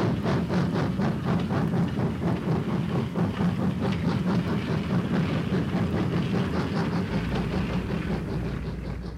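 A passenger train rolls along steadily, its wheels beating a rapid clickety-clack rhythm over a constant low rumble, loud throughout with no voices.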